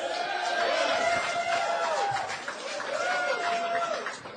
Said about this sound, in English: I love you. You're the only people who applaud Jaeger. And I'm telling you, something is wrong with that.